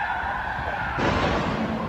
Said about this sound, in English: The horrifying sound of the crash.